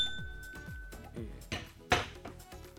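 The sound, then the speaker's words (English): Glasses clink together in a toast, two bright taps with a brief ringing tone, over a soft, steady rhythmic backdrop. “Let me say cheers.”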